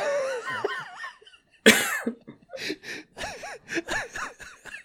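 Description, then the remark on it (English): A sudden, loud cough bursts out, surrounded by strained, wavering vocal noises and short gasping breaths. “My cough really set this off.”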